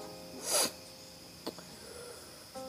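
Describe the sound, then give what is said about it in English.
A single sharp, airy nasal sniff near the start from a person with a slight allergy sniffle, followed by a couple of faint clicks and soft rustling in otherwise quiet surroundings. No one speaks. “Got the little bit of a sniffle.”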